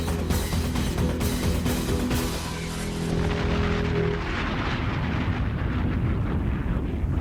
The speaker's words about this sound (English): Another event. Another explosion.